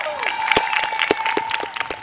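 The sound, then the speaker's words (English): A crowd of about 300 family members on a lawn applauds eighth grade graduates at their graduation ceremony on a spring day, with dense steady clapping and scattered cheers and whoops rising over it, loud and sustained throughout. “It was this perfect spring day, and there must have been like 300 family members out there cheering their kids on.”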